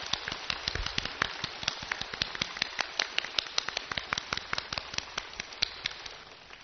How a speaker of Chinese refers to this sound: 我们期待已久的时间到了，以热烈的掌声欢迎青海无上师。